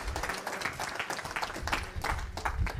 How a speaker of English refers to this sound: I trust you no matter what. Can we cheer for that? We trust him no matter what.